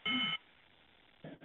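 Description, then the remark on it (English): A single loud electronic beep, short and steady, like a voicemail recording tone, followed by near silence and then the faint start of another sound. “After the tone, record your message.”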